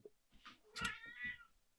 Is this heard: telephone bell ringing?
no